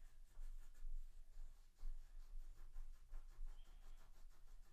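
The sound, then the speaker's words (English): Steady scratching of a pencil pressed hard against paper, continuous with quick rhythmic strokes, over a low background rumble. “You're pressing really hard. You don't have to press that hard.”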